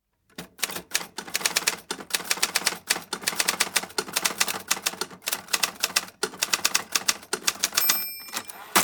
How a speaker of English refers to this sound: Silence. Fingers poise over the typewriter. She loves this moment.